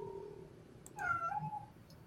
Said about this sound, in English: Yeah. What? Meow? Oh, yeah, yeah, I did hear that. All the fur babies want to say hi tonight.